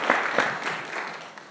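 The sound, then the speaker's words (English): An audience claps steadily for a preacher after his sermon, a dense wash of many hands with a few sharper individual claps standing out, holding at a fairly even level throughout. “All right, clap it up”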